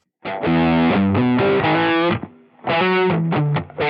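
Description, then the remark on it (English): A distorted electric guitar plays through a modded amp, loud, gritty chords and riffs with a midrange-heavy crunch, a brief drop near the middle, then more driven strumming. “But they're all modded to be a certain thing to get that, you know, you can hear it.”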